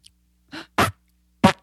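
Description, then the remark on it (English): Three short, buzzy bursts of a mouth imitating a fart, spaced unevenly with brief silences between, moderately loud with no talking. “Like, you're almost going to do a fart sound.”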